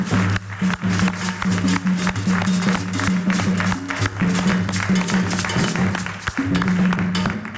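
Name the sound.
audience applause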